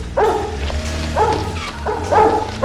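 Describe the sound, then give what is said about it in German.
A dog on a chain barks frantically, loud, insistent woofs repeating roughly once a second with a low rumble underneath. No one speaks. “Die Kette, an der der Hund hing, reichte nicht so weit, was den Vierbeiner aber nicht daran hinderte, weiter zu bellen, als hinge sein Leben davon ab.”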